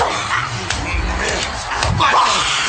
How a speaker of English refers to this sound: There's just so much like slapping and grunting going on during this.